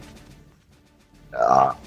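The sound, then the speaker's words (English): A single loud burp erupts near the end after a stretch of quiet background murmur, lasting about half a second with a rough, throaty tone. “that … chick, she's so gross. She's always burping.”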